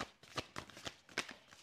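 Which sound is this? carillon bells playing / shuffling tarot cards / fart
shuffling tarot cards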